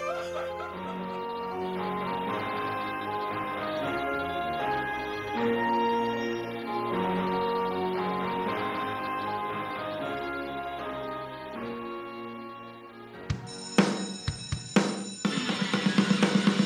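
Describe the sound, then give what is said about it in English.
Music plays, then a loud, shrill school bell cuts in with a few short rings before ringing continuously until the end, marking the end of a class at Video High. “And that's the bell, meaning an end to another class here at Video High.”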